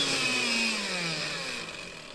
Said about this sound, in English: the lamp comes on, a blender plugged in, all of a sudden, there you go. Imagine I'm making a smoothie right now.